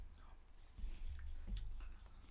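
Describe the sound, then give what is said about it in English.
Quiet chewing of a crunchy flavored snack, with a few crisp crunches and soft mouth sounds over a couple of seconds and no talking. “The ranch flavor, it's crunchy, it has a little saltiness to it, and then has that ranch flavor.”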